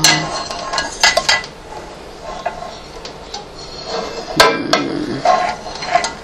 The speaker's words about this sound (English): I'm going to get a skillet.